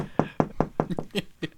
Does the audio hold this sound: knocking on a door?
yes